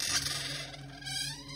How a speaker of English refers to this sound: A scuttling sound emanated from outside, within the hall.